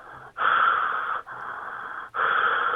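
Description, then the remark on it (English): Loud heavy breathing into a telephone by a prank caller: three long, raspy breaths in and out, each separated by a brief pause, with no talking. “And the same thing, I'm just breathing heavily into the phone.”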